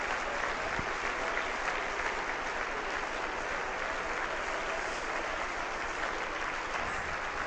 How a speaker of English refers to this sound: Clap your hands to the Lord and praise him.